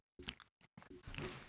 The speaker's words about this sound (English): I begged … not to chew into the microphone, and then we did a segment where we eat into the microphone